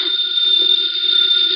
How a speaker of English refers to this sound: The phone is ringing. Let it ring. Just as you say. It's the house phone,